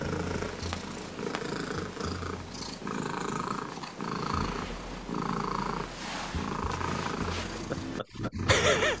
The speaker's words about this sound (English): This is an official attempt for the loudest purr by a domestic cat.